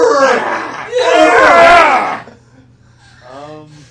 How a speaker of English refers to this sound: I just scream at him.